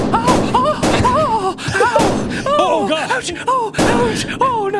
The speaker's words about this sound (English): The police officer whips around and starts pumping Spider-Man full of bullets.